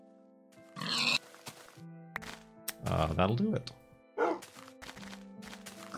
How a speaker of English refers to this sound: What am I looking for here? Ah, pigs.